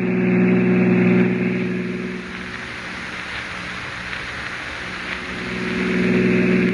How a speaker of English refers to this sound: Oh, officer, can't you go faster? I'm driving as fast as I can